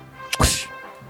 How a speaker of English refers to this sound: Right. Whip sound. Thank you.